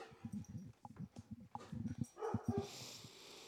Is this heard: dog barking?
yes